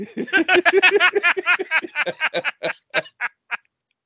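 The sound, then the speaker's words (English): A person imitates a chicken with a rapid run of nasal, squawking clucks that gradually slow and space out, ending in a few sharp isolated squawks, fairly loud. “And I'm a fuck chicken now.”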